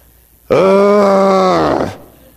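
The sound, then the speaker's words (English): A person imitates a growl of frustration, the third level in a series of frustrated groans: one loud, steady, gravelly voiced groan lasting about a second and a half, holding a low pitch before sagging downward as it cuts off. “It's the growl of frustration. This is just a steady, clear animal noise.”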